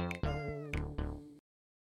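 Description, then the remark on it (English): Several loud meows from a gang of alley cats overlap in quick succession, drawn-out and wavering in pitch, then cut off abruptly into silence. “It's a gang of alley cats.”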